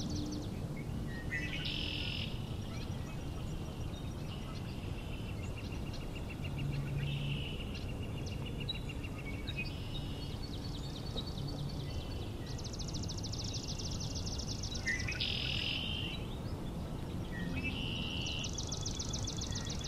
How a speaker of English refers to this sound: Those swamp sparrows. This place probably has the most song sparrows I've heard in a while. And I said before there's probably five singing. It's probably more than that. You know, this ringing trill. That da da da da da da da.